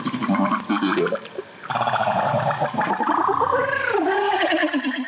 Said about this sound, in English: And I can remember listening to that at our beach house, looking out on the ocean, the Pacific Ocean in Malibu, and just being enthralled by how strange and beautiful those whale songs were.